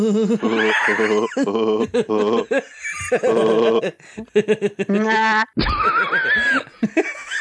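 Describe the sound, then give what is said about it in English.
A person imitates a sheep, letting out a run of loud, wavering bleats, one after another with short breaks, ending in a harsher, strained bleat. “That's like a sheep. We've got a sheep locked in there with you.”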